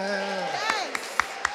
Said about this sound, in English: Let's have more cheering for being back in the room.